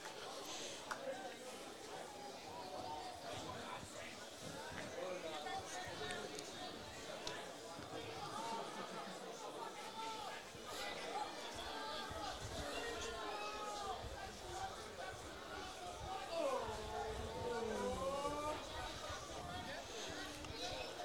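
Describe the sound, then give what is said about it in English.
A steady, dense buzz from a large football crowd fills the stadium during a night match, with countless overlapping voices blending into a continuous roar that swells slightly toward the end. “Plenty of buzz in the crowd here tonight.”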